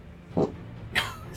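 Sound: fart noise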